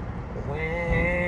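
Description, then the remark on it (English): A loud motorcycle roars past, its engine a heavy low rumble with a whining tone that climbs in pitch partway through, steady and loud for the whole moment. “When are motorcycle people gonna realize no one gives a fuck about their loud ass bikes?”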